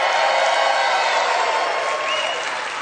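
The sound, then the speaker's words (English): A crowd of Kansas City Chiefs supporters cheers and claps in a steady, dense roar of mixed voices and applause that holds for about three seconds before easing off slightly at the end. “If you are going for the Chiefs, make some noise.”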